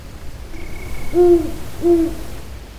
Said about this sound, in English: The voice of the owl entered the conversation. The sound seemed to be almost on top of them.